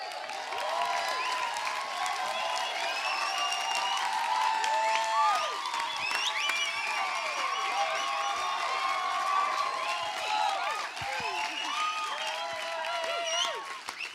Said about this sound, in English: Thank you so much. That was a bigger applause than this morning, so thank you. I feel very welcomed.